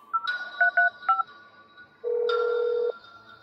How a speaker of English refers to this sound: watched as Maria paced back and forth, repeatedly trying to make a phone call.